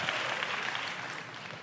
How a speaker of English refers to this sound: Go ahead, ladies, you can clap now. You've been waiting for that.